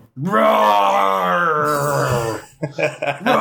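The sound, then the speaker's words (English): A person's voice lets out a long, loud, drawn-out roaring growl imitating a dinosaur, strained and sustained for about two seconds, then trailing off into a few rough, breathy vocal bursts. “I'm doing my best dinosaur impression that I can.”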